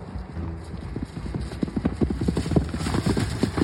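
Horse hooves clip-clop in a quick, steady rhythm, many sharp knocks growing slightly louder over a few seconds, with no voices.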